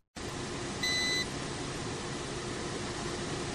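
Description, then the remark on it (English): A steady, even hiss of air conditioners fills an empty, usually busy courtroom in Cameroon's capital Yaounde on a Monday, with a short high electronic beep sounding once near the start. No one speaks. “Only the hissing noise of air conditioners was heard at the usually busy full courtroom in Cameroon's capital Yaounde on Monday.”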